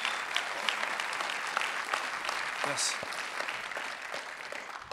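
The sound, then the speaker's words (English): A church audience at Parkway breaks into sustained, dense applause during a morning service for those coming to Jesus, a steady wash of clapping that holds at an even level, with a brief voice calling out partway through. “And I know your heads are bowed and your eyes are closed this morning, but Parkway, would you join with heaven this morning and give a big round of applause for those that are going to come running towards Jesus?”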